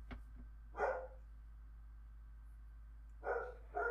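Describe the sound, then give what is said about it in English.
A dog barks three times, once early and then a quick pair near the end, fairly loud against an otherwise quiet background with a low steady hum. “Our dogs are ruining our episode.”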